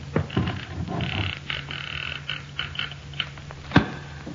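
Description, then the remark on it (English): A door creaks as it is pulled open, a slow, raspy groan with wavering tones and scattered clicks, ending in a sharper knock. No one speaks. “Now, Pancho, open the door.”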